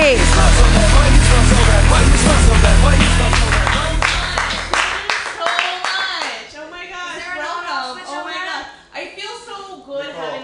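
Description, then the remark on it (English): A San Francisco comedy show audience claps loudly and steadily for the night's first comedian for several seconds, the dense clapping thinning out as a voice starts talking over the last scattered claps. “Clap your hands wildly”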